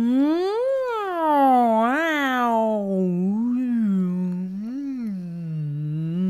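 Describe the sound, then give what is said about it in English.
Voices make scrunchy noises: a continuous wordless vocal sound that keeps sliding up and down in pitch, swooping and wavering for several seconds at a steady, moderate loudness. “Let's try doing some scrunchy noises.”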